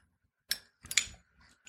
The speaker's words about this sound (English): As I light up the cigar.